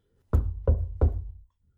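Three firm knocks on a door, evenly spaced, each a solid low thud with a short ringing decay, then silence.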